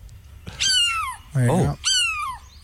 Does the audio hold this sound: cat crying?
yes